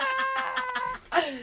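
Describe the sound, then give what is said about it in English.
A woman's voice mimics a cat, giving a strained, nasal meow-like whine followed by a short rising mew near the end, fairly loud. “This is a person who wanted to be a cat when she was little.”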